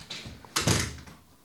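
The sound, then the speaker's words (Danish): A door swings shut with one solid thud as someone leaves the room, preceded by faint handling noise and followed by a short fading rumble. No one speaks. “Ud af døren til højre rundt. Okay, ud på trappen.”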